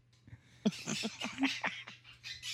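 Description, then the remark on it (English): A caged pet bird named Scooby chatters in a rapid run of sharp, scratchy squawks and chirps, with a steady low electrical hum underneath and no one talking. “And you hear the sound she's making now? Multiply that by, 3,000 and constant.”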